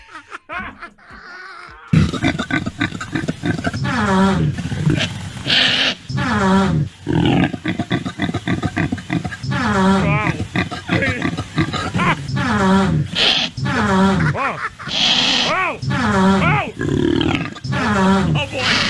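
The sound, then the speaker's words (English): Impala mating noises mixed with Steelers wide receiver Antonio Brown passing gas: a rapid, continuous stream of loud, harsh grunts and rasping roars, some with rising and falling tones, beginning after a brief quiet moment and carrying on without pause. “These are the mating noises of an Impala”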